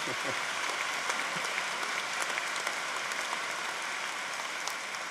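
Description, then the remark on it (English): Steady applause from parents in a crowd, a dense continuous patter of many hands clapping at even loudness for several seconds, with no voices standing out. “The parents are clapping.”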